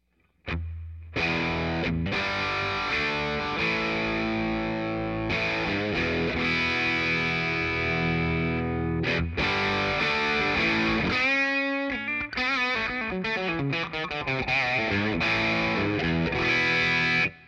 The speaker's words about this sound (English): Since this amp is brighter, I have the filter control down quite a bit, almost all the way off, almost all the way clockwise rather. And it's going to be a really good overdrive. So let's run that through this Fender amp.